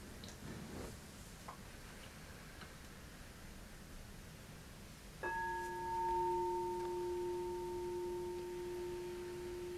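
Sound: meditation bell ringing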